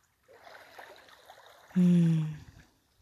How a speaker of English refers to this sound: I love you guys, and I'm sending you the flow of this beautiful ocean, Kye Bay.